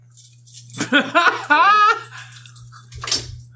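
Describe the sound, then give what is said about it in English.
A dog barks several times in quick succession, the sharp, high-pitched yaps running together over a low electrical hum, followed by a brief rustling noise. “The dog is now gone.”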